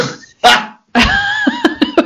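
A dog barks: two sharp, loud yaps, then a drawn-out whining howl that breaks into a quick run of short yips at the end. No one speaks.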